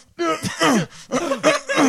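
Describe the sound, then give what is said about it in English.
A voice imitates a cartoon character's straining, constipated grunts: several tense, pitch-bending groans in quick succession, fairly loud, with short pauses between efforts. “and then you got that one that's like constipated.”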